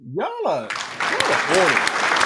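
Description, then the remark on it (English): A gliding, rising-then-falling tone opens, then a dense burst of clapping takes over, steady and fairly loud, with a few cheering voices rising above it: a round of applause on a livestream for a viewer who moved over to YouTube. “Can we give Kenya a round of applause?”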